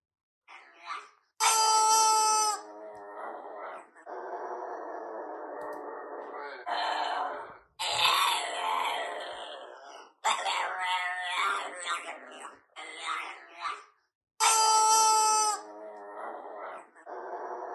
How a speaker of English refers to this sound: That's the sound of a pug who loves rubber chickens.